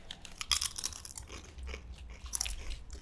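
Crisp, crackly crunches of thin cassava chips from Peru being bitten and chewed, a quick cluster of sharp snaps followed by steadier munching, fairly quiet with no talking.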